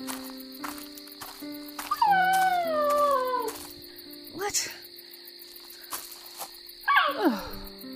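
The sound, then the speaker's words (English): A small male golden retriever whimpers: one long, high, wavering whine that slides downward, then a shorter falling whimper near the end, over a steady chirring insect-like background hum. “Just a gorgeous little retriever.”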